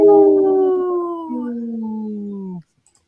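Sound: wolf howling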